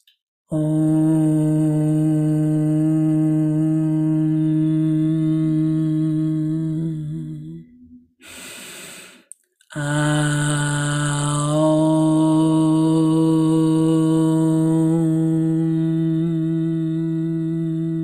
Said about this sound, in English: you who are ready and willing to start to build that participation, you might want to start underneath me, build to match me, and then try and maybe even be louder, fuller, kind of take the stage, so to speak, with these ohms.